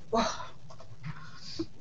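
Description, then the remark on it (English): A dog, Ruby, pants in quick, breathy bursts, with a short high whimper near the start and another brief whine toward the end. “The dog is barking.”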